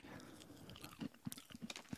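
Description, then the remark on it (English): A crisp bite into a crunchy waffle snack, followed by several quick, irregular chewing crunches with short bursts of crackle, fairly quiet and with no talking. “All right, let's dive in. I have a feeling this is going to be a good, tasty flavor.”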